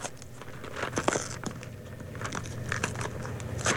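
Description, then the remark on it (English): Crinkly rustling and crackling as a snack package is torn open, with irregular sharp bursts of tearing paper over a few seconds and no one speaking. “Now, I'm opening the secret snack right now.”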